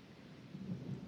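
A low thunder rumble rolls through a storm, swelling slightly partway through over a steady wash of rain-like noise, fairly soft, with no voices.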